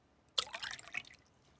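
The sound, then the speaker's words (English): A sudden splash of water spilling onto a laptop, followed by a quick patter of drips that fades out within about a second. No one speaks. “And he spilled it all over my laptop.”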